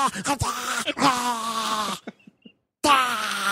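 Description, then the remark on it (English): A child in a movie imitates hyena noises with harsh, whooping, groaning cries in a few bursts, broken by a short silence before one last loud whoop. “It's just like hyena noises.”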